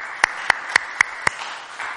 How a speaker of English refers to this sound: Let's give a round of applause to the Pharisees' theology. Come on, let's hear it.